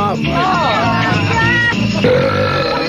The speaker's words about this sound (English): Wow. Boy, guys do belch better than women, don't they?